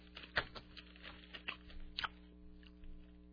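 Someone chewing a mouthful of nuts, with irregular crunchy clicks and snaps at an uneven pace over a low steady hum, fairly quiet and with no talking.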